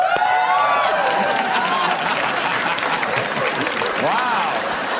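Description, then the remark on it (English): An audience erupts in sustained applause and cheering at the news that the Crocs company is closing dozens of stores, loud and continuous throughout, with whoops and shouted voices rising above the dense clapping. “Euphoria from the audience.”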